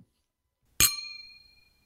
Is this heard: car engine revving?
no